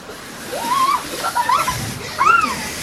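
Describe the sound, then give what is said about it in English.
Three rising and falling swells of splashing, rushing water, seemingly made by a voice imitating waves, with breathy hisses and tonal whooshes at a moderate, steady loudness. “And the waves were terrifying and terrific.”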